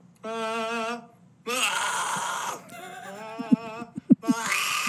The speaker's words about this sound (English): Scream, only changing mouth shape.